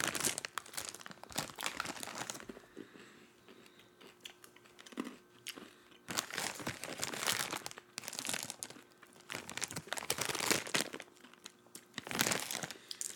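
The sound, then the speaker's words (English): A plastic bag of Campfire S'mores M&M's, about peanut M&M size in Halloween colors, crinkles and rips open, followed by a rattling cascade of the candies pouring out, in several loud bursts of crinkle and clatter with short quieter gaps between. “The rip, and then they cascade out.”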